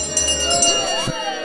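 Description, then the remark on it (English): A last call bell rings out with bright, sustained metallic tones that hum steadily for over a second, while a low murmur of indistinct voices and clinking moves underneath. “And that's the last call bell for week, seven?”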